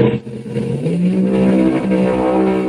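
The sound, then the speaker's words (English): A pro mod drag car engine revs loudly and steadily, its deep harmonic roar holding and climbing slightly in pitch throughout, with no talking. “God, I missed that sound. I got to be honest with you, I missed that sound.”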